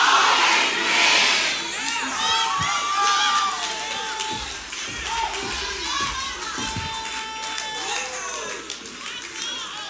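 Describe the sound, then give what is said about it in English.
A large audience screams and cheers loudly and continuously, a dense wall of excited shouting voices with high-pitched whoops rising above the roar throughout. “Somebody scream, I always win.”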